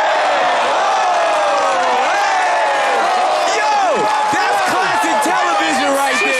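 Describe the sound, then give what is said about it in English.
A loud crowd cheers and whoops for hip-hop, many voices overlapping with rising and falling shouts, and scattered clapping joins in during the second half. “This is hip-hop for today, so let's clap for hip-hop. To hip-hop, hooray!”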